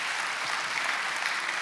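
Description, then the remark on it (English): A church audience claps their hands to show love and appreciation for Pastor Tyler and Rachel, in steady, dense applause, a continuous wash of many hands with no voices standing out, holding an even level throughout. “Can we clap our hands and show our love and appreciation for Pastor Tyler and Rachel?”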